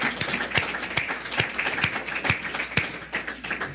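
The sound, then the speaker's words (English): A church audience claps in praise in a dense, steady burst of applause, with sharper individual claps standing out in a loose rhythm roughly every half second. No one speaks. “Give the Lord one more hand clap of praise before you're seated.”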